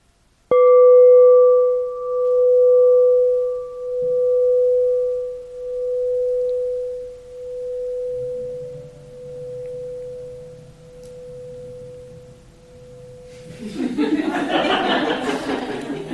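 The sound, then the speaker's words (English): A meditation bell is struck once and rings with a steady, mellow tone that pulses slowly as it fades over about thirteen seconds, followed by a brief burst of noisy laughter and chatter. “The consciousness of bell sound arose with bell.”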